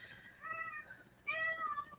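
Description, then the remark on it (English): A male pet cat meows twice in quick succession, each call a drawn-out, wavering cry, with no voices around it. “And so is my mom's cat, my little guy. He never does this.”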